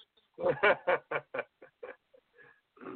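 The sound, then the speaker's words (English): Turkeys in a pen gobble in a rapid, loud burst of warbling calls that trails off into a few fainter, scattered clucks before another call starts at the end. “He's so gentle and loving with the turkeys. Just throwing it in that pen like a bag of garbage.”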